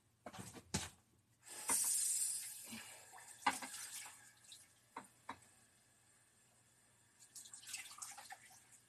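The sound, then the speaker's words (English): Water runs from a tap in a short, steady hissing burst as someone gets water for a cat, framed by sharp clinks and knocks of something handled at a sink. No one speaks. “Let me get you some water.”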